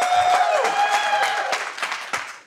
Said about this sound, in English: Here's the poll. I'm Hams in it. Here's the poll. Round of applause and cheers. Hams?